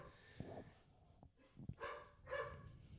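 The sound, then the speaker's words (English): A dog, Bo, barks about four times in an irregular series, sounding faint, with no talking over it. “And that's just Bo barking a lot.”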